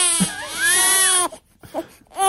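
A baby lets out one loud, sustained wail that rises and falls in pitch, followed by a brief pause and a couple of short, softer whimpering gasps.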